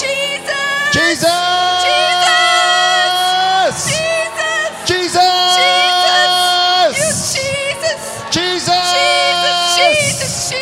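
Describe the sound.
A large crowd shouts the name of Jesus loudly in unison, in long sustained bursts separated by brief breaks, the cries overlapping.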